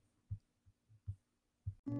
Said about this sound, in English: You curled into his side as he turned on the TV, and any fear you had disappeared as you listened to his heartbeat.